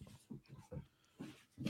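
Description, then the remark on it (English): Short, low grunting snorts from dogs wrestling come in uneven bursts, about six of them over a couple of seconds, fairly quiet. “Fellas, are we mating or what are we doing there? No, we're having a wrestle.”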